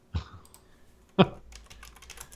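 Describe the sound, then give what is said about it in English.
Typing on a computer keyboard: two sharp, heavier key strikes about a second apart, then a quick flurry of lighter, rapid clicking with no one speaking. “I was typing in the note to type in the water rotor and then fucked up my tabs.”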